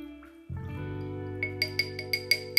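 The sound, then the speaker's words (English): Volstead vodka, a clear vodka, is poured into a glass in a steady, resonant stream, followed by a quick run of six or seven light, bright glassy clinks. No one speaks. “All right, let's pour it up in here.”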